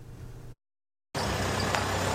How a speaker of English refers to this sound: A truck pulls into a residential community.